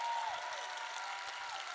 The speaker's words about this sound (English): Keep that applause going and welcome up to the stage,